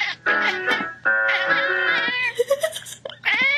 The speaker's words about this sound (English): This opera singer is doing some practicing until her cat interrupts.